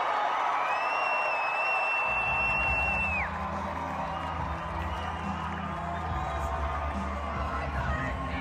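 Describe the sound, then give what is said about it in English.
A record-setting crowd at a Trump rally in the Reno convention center roars and cheers steadily, with scattered whoops and shouts, a long shrill whistle near the start, and a deeper rumbling din swelling in after about two seconds. “A record-setting crowd at their convention center.”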